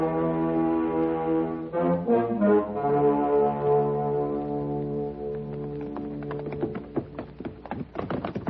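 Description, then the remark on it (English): Horse hooves clop on hard ground as riders move their horses, an irregular run of taps growing busier toward the end, beneath a loud, sustained droning tone that dominates the first half. “Watch your horses don't slip.”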